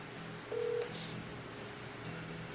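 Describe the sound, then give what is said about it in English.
A single short telephone keypad tone beeps once, clear and fairly loud, as a phone number is dialed, against a steady low hum with no one talking. “He's not going to answer the phone.”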